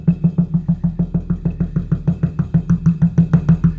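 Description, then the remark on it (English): Rapid, steady knocking on a front door, about eight hollow thuds a second, keeps up without pause for several seconds. The blows are loud and resonant with a deep boom, and no one speaks. “Even though we're in radio, in the theater of the mind, you need to understand the power of knocking.”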